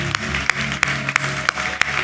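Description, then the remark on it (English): An audience claps together in a dense, steady wash of applause, with sharper accented claps landing about three times a second in a regular rhythm. No one speaks. “I'm gonna let y'all clap if you want to, because I feel like you should.”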